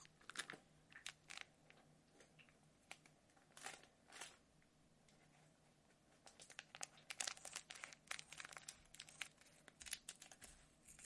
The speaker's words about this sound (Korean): 이거는 집에 있길래 솜털 대신 써보려고 가져왔어요. 근데 이 비닐 소리가 생각보다 엄청 커요. 이걸로 솜털 귀 청소해드릴게요.